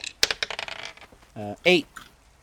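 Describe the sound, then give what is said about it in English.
Dice rattle and tumble across a hard table in a quick burst of sharp clicks that slow and settle within a second, rolled for an intelligence check, followed by a couple of short voiced utterances. “Hold on, let me roll an intelligence check here. Got my dice.”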